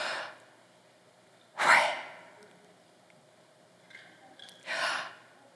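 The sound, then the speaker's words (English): A person breathes in and out deliberately: several airy, breathy exhales and inhales separated by short pauses, the loudest around the middle and end, with no talking. The breathing imitates the pronunciation of the divine name YHWH, which some rabbinic scholars theorize is the sound of breathing. “But there are some rabbinic scholars who have theorized that the pronunciation is actually the sound of breathing.”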